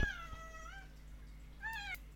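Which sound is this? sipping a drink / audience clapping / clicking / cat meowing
cat meowing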